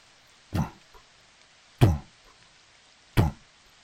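Three heavy, dull thumps of a hand slamming on a slab of wood downstairs, spaced evenly about a second and a half apart, each a sharp low-heavy impact with a short decay, with quiet between them.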